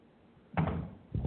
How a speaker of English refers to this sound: Oh, just knocked over a speaker. Good thing it didn't fall through the floor.